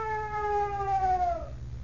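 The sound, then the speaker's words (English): A strange, terrifying scream aboard a ship empty of captain and crew on a fog-bound night: one long, eerie wail holding a high pitch, then sliding slowly downward before cutting off, over a steady low rumble. “Through the fog-bound night, aboard a ship mysteriously empty of captain and crew, comes a strange and terrifying scream.”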